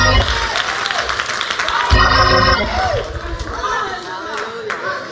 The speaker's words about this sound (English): Clap your hands if you feel what I'm talking about.